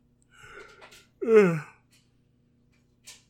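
A single drawn-out yawn, starting with a soft breathy inhale and swelling into a loud, wavering groan, followed by quiet and a brief faint breath.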